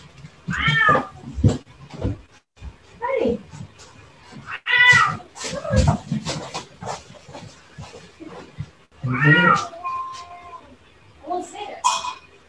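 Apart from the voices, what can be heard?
cats yowling and fighting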